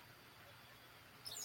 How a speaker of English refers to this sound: I am at home, so y'all can hear my birds out there. Just, it's in the morning, so my birds, I've got these beautiful tree houses, you know, these little bird houses, and the birds just love them.